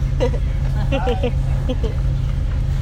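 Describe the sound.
Steady low engine drone and road rumble fill the interior of a moving city bus, with people's voices talking faintly over the constant hum.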